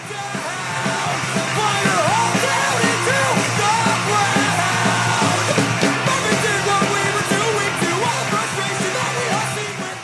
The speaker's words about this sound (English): We found YouTube videos with titles like Marvin Heemeyer's Valiant Last Stand, and he celebrated in this rather hard-to-listen-to punk song.